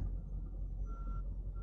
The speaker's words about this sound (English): Busy little truck stop. It's getting dark out.